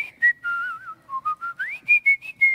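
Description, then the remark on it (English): A person whistles a short melodic phrase from a song, clear, with sustained and gliding tones followed by a series of shorter rhythmic notes, no talking. “And I whistled a portion of it.”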